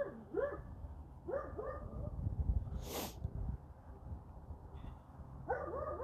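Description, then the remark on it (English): A dog barks in short clustered bursts, two or three yaps at a time, separated by a pause filled with low rumbling noise and a brief breathy hiss, then barks again. “Even that dog's bark is perfect, even if there's a part of me that doesn't want it to be barking.”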